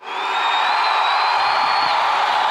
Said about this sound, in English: I'm going to get my thunderous applause button ready.